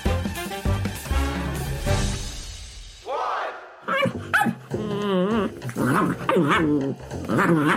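A dog barks in a series of short, loud bursts with whiny, yipping tones between them, following a few seconds of dense, busy sound at the start.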